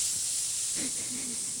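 A steady, airy hiss of escaping steam runs unbroken from start to finish, bright, with a faint murmur of voice briefly underneath midway.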